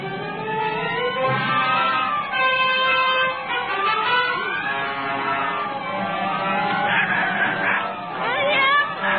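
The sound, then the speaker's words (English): A flock of chickens from a chicken roost caught in a cyclone squawks and cackles loudly and continuously, the frantic calls overlapping in a dense, agitated chorus. “Through the sky, barns and buggies, and there goes our chicken roost.”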